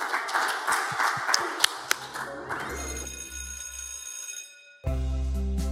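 An audience applauds in a dense burst of clapping for a couple of seconds, then it thins out as sustained ringing tones and a low hum take over before an abrupt steady drone.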